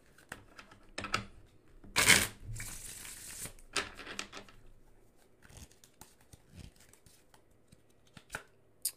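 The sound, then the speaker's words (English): Tarot cards being shuffled: a burst of crisp riffling and flicking, then softer papery slides, taps and scattered clicks, with no talking. “Let's shuffle.”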